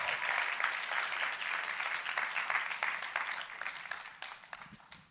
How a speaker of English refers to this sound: So do you guys want to come on up? And can we give them a round of applause as they come up?